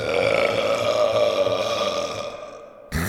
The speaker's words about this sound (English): I accidentally let out a loud burp.